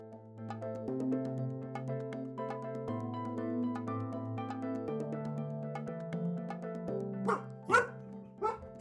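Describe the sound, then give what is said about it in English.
A dog lets out three sharp barks near the end, following several seconds of steady, stepping tonal music with no talking. “Dog's really upset about that.”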